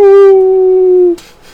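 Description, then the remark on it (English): A person imitates a single sustained wolf howl, loud, holding a steady pitch for about a second before cutting off into a brief breathy tail. “That was my wolf noise, if you guys didn't know that.”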